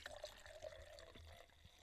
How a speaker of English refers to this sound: ASMR. Here, hold on, listen. Ready? I'm going to pour the wine.